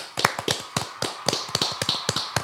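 A brief round of applause from a small group, with sharp, uneven claps overlapping in a quick, steady patter at moderate loudness and no voices.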